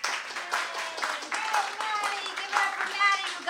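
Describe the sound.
A crowd claps steadily for several seconds in a dense, even patter, with voices cheering and whooping over the applause.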